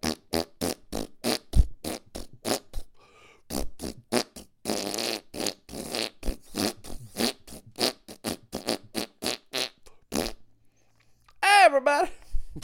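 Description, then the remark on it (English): A rapid string of short, blatty fart noises repeats, with a longer sputtering stretch midway and a brief high, wavering vocal squeal near the end. “Fart noises just make me laugh.”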